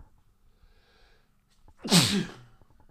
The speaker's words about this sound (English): sorry, I'm gonna sneeze.